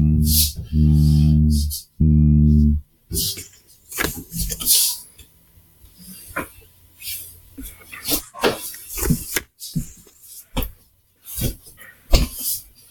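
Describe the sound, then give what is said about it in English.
A voice imitates the low mechanical thrum heard in a windowless, dimly lit area with doors on either side, making three loud, steady, deep humming bursts, the last shorter, followed by quieter talking and rustling. “But basically, all you can hear is a thrum. It's like a...”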